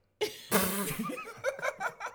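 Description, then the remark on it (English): A guest sneezes during a prayer: a sharp sneeze bursts out after a short intake, loud and breathy, followed by a run of quick, rhythmic laughing breaths that rise and fall. “We have a sneezing guest who's been really, really quiet this whole time.”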